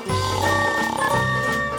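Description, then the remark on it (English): A voice imitates loud snoring, one long, rough, rumbling snort with a croaking, pig-like low buzz that holds steady for under two seconds, alone with no talk. “I love to snore. It's more like a roar.”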